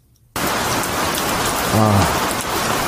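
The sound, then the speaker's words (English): Steady rain drums on the roof of an RV, a dense, even patter that starts abruptly and continues without pause, with a brief low tonal hum near the middle. “Rain on the roof of your RV is a wonderful sound.”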